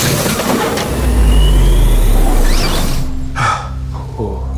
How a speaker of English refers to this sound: Glad it started downpouring, because I want to play a game, a video game, instead of an outside game.